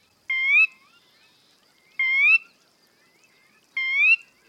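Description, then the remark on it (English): A sora rail gives three clear, rising whistled calls, evenly spaced about two seconds apart, distinct against an otherwise quiet marsh background with no talking. “There are many things people can do to protect birds, like this sora, a bird that lives in marshes.”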